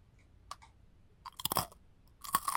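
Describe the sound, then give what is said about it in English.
Crisp crunching of tomato and herb artisanal-style crackers being bitten and chewed, a few sharp bursts spaced across a couple of seconds with quiet pauses between, no talking. “It says crackers with tomatoes and herb, crunchy artisanal style crisp.”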